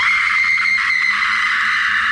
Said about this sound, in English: You know, do some primal screaming perhaps.